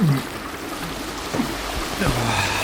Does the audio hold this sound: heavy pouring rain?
yes